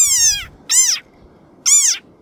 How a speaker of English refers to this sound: Instead, it's a round boy with short little thin legs that it uses to dig burrows in the sand where it lives, which is a desert. It's a rain frog that lives in a desert. Also, it makes this sound.